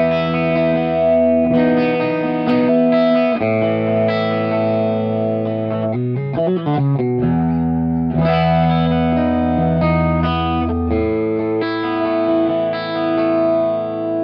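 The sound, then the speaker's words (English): Clean electric guitar chords, with distortion off, ring out through a Mimic pedal's thickening, chorus-like effect turned up, sustained and full, with a quick flurry of picked notes midway; loud, with no talking. “Let's turn the distortion off, turn the effect back up, and really thickens up your clean stuff.”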